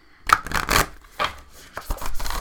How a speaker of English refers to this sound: Okay. So here we go. And yes, I shuffle mine like I'm playing poker.